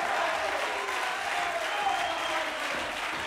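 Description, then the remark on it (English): An audience claps steadily, a dense, even wash of many hands that holds level for the whole stretch, with faint voices murmuring underneath. “The folks that are clapping and lifting their voice are the ones that he broke the chains, where he broke the bondage.”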